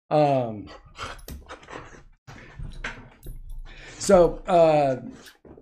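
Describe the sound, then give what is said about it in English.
A male pet dog, upset, whines in a series of drawn-out, wavering, high-pitched cries, with the longest and loudest near the start and the end, broken by shorter yelps and brief pauses. “as you can hear, he's very upset with me right now.”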